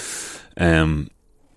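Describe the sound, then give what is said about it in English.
An airy slurp of a warming cup of tea being sipped on a crisp winter's day, followed at once by a short voiced exhale of satisfaction, then quiet. “So it being a lovely kind of crisp winter's day, I have a lovely warming cup of tea beside me here. So 1 second. Tea's great.”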